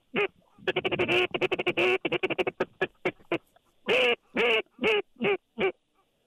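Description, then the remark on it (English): A duck hunting meat (feed) call for South Louisiana, blown by a five-time state duck calling champion in a fast, loud feed chatter of many short, raspy quacking notes, followed by five longer, drawn-out quacks with brief pauses between them. No one speaks. “Let me hear your best meat call for duck hunting in South Louisiana.”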